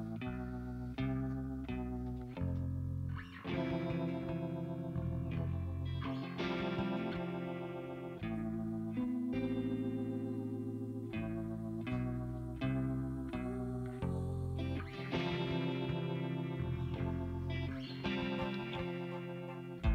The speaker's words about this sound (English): Up next, we've got …. This was the second single from the album.